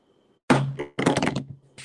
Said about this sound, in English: slammed the table and his phone completely cowped.